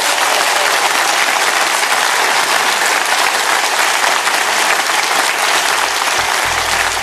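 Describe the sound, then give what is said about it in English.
An audience at the Cheltenham Literature Festival bursts into sustained applause for a panel, dense overlapping clapping that stays loud and steady for about seven seconds with no voices standing out. “A round of applause for our panel, please.”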